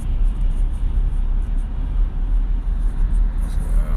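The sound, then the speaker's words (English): A steady, heavy rumble of busy street traffic at night fills the scene, a constant low roar of moving vehicles without any clear single pass-by standing out. “But, nevertheless, man, it's really busy out here tonight.”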